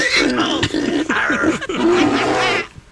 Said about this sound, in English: He has all kinds of pig sounds. Yeah, keep it going. Play them on top of each other. There they go.